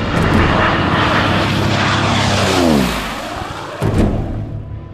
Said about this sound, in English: Push the throttle. The propellers roar.